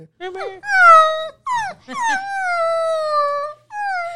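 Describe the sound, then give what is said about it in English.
A person imitates a pit bull crying at a back door, making a series of high, drawn-out whining screeches that rise and fall, loud, with short breaks between them. “It's the pit bull crying at the back door.”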